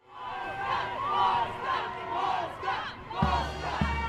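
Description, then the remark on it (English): A parade crowd cheering and shouting outdoors at the Constitution Day Parade in downtown Chicago on a sunny, windy, cold day, many overlapping voices in a steady, lively roar for about four seconds, with a deep rumble joining in near the end. “Every spring, thousands of people gather in downtown Chicago for the Constitution Day Parade”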